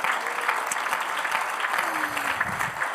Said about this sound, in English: Oh, come on, clap your hands unto the Lord tonight.